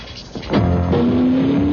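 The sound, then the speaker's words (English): An Alfa Romeo sports car with an aluminum, fuel-injected engine revs, its loud, steady growl climbing in pitch over about a second and holding strong, with no voices present. “A machine whose aluminum engine and fuel injection system, Motor Trend magazine reports, can squeeze 29 miles out of a gallon.”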